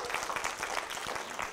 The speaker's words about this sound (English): Anybody here before 2019, back in South Brandon days? Praise God. Man, that's awesome. Somebody can clap about that.